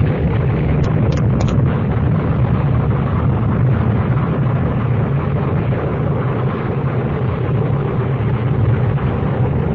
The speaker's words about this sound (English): Professor come by earlier and set up the explosion? Or did the natural forces of spontaneous combustion pick that exact moment to assert themselves?